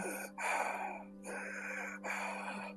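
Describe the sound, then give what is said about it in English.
A voice imitates an older man's heavy, raspy breathing, like a smoker's: three long, noisy breaths in a steady rhythm, fairly loud, with short pauses between them and no talking. “I could hear this heavy breathing behind me. It sounded like an older guy who was probably like a smoker or something.”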